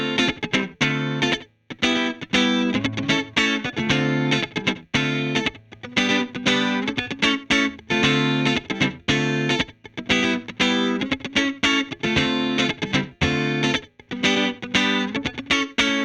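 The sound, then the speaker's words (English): Clean electric guitar strums steady chords through a short slapback delay from a Universal Audio Delver, a quick echo trailing each stroke. The rhythmic playing stays even and full, with a few brief pauses and no voices. “You can hear I have a bit of slapback going on there from the Universal Audio Delver.”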